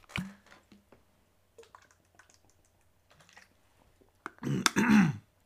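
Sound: sipping water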